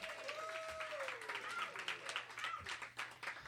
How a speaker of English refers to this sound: Maybe give some applause for the ladies. This is great.